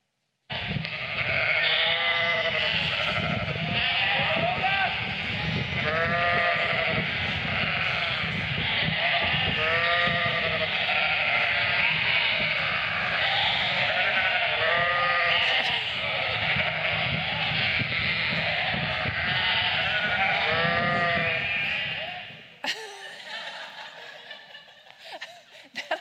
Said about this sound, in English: So when you watch this video, I want you to get your sheep bah voice, okay? You guys are going to be really good at this.